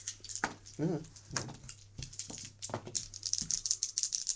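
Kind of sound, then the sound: household object, dice rolling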